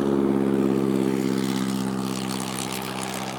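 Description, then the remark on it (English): A train's heavy diesel drone rumbles steadily, a deep harmonic hum with some hiss on top, loud at first and easing slightly over a few seconds. No one speaks. “I would record the sound of the train coming.”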